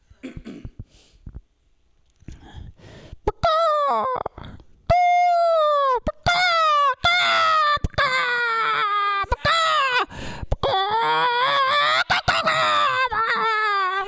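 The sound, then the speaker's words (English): Someone doing an animal impression howls like a wolf with their voice: a few soft breathy sounds, then a string of loud, drawn-out wailing cries whose pitch swoops up and slides down, one after another. “That's a wolf. It's a wolf.”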